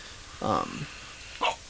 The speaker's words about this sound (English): I've had a hiccup since 8:30. That's all right. I had a hiccup.